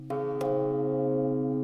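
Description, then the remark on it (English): Large old church bells of the Sacré-Cœur de Jésus Church in Montreal, each weighing more than an F-150 pickup truck, ring out with two heavy strikes in quick succession, their deep, resonant tones overlapping and sustaining in a loud, humming wash with no voices. “What do you do with a bunch of old church bells that weigh more than an F-150 pickup truck?”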